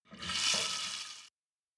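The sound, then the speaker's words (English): A bathroom tap runs for just over a second as kids wash their hands, a steady bright hiss of flowing water that starts quickly and cuts off abruptly. No voices are heard. “The kids ran straight to the bathroom to wash their hands.”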